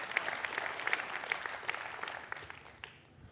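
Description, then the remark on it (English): An audience breaks into steady applause, many hands clapping in a dense, crackling wash that gradually thins and fades out toward the end. “And you can clap for a principle of God, but dadgummit, do something about it.”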